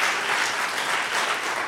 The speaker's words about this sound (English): Now give the Lord a clap offering. Hallelujah. Yeah.